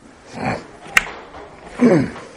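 A back door swings shut with a single sharp latch click, framed by soft shuffling noise before and a fuller rustling swell afterward. No one speaks.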